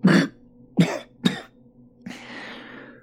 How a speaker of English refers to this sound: I cough up something wet and bloody.